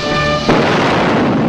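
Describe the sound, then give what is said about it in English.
A steady, faint tonal hum cuts off as a loud dynamite explosion bursts in, followed by a dense, rumbling roar of debris that holds steady for over a second, from a scene in the Western film Butch Cassidy and the Sundance Kid. “Dynamite's ready, Butch. Well, that ought to do it.”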